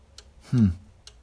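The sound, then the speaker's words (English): A mechanical glockenspiel clock, with a little balcony and small figures of a man and a woman at the top, ticks twice, roughly a second apart, with crisp, moderately quiet clicks; a short, low voiced sound briefly rises between the ticks. “See, that's what makes it a glockenspiel. A cuckoo clock just has the cuckoo, but no, not this.”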